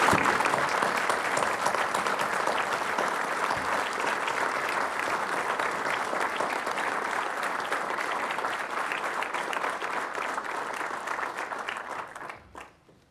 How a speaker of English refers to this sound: Brothers and sisters, let's give some applause back to people who have stood in the face of so much.